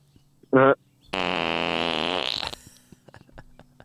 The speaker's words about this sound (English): He just farted too.